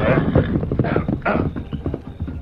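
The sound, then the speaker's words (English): The hooves of the Lone Ranger's horse, Silver, clip-clop in a quick, steady, loud rhythm as he rides with Tonto to Needle Pass, with a few brief rushing bursts mixed in and no voices. “The Lone Ranger immediately saddled his horse, Silver, and rode with Tonto to Needle Pass, scene of the gold robbery.”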